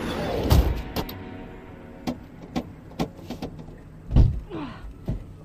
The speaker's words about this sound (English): Doors won't open, babe. It's called Master Lock.